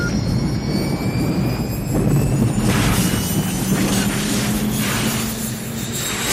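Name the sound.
spaceship crash landing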